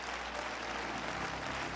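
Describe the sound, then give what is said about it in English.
A church audience claps their hands to the Lord in a dense, steady wash of applause, many overlapping claps blending into a continuous loud roar with no voices standing out. “Why don't you clap your hands mightily, mightily to the Lord.”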